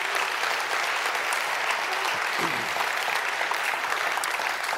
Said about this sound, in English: And that young lady is remarkable, and she serves here in the church, and I'm thankful for her. So please, thank her. Clap. Let's do that.